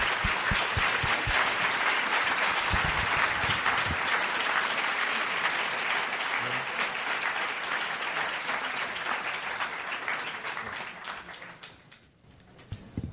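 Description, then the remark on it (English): Sustained audience applause for the guests of a conversation before a Q&A, a dense wash of many hands clapping steadily for about twelve seconds before thinning out and dying away near the end. “Well, as we transition to the Q&A between you and our guests, please join me in the first round of applause for our guests coming and having this conversation.”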